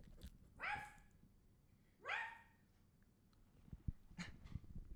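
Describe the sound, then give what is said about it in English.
Two short, yelping barks from Leo the dog, about a second and a half apart and clear, followed by some faint clattering and rustling. “So, tell me, you are a dog. What's life like being a dog?”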